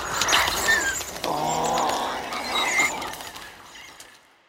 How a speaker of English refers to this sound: But in this case, you're choosing higher pitch sounds, bird sounds, and even taking pitched up lions so that you don't have any more of that big weighted growl. You just have these unique squeaks and squeals.